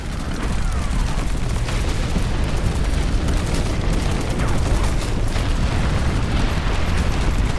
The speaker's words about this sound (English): Within moments, the ground began to shake, a rumbling from the pit of the world's stomach.